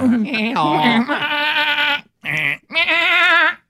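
A goat bleats loudly three times, a long wavering cry followed by a short bleat and another quavering call after a brief pause.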